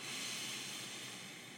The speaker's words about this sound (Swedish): Jag ber er att börja den här podden, den här stunden när ni lyssnar, med att ta ett djupt andetag in genom näsan.